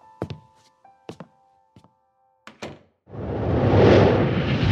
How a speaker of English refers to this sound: Please, I'll latch the door.